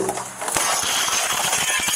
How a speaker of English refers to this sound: A house is ablaze and a little boy is trapped inside. A deputy sheriff smashes the window.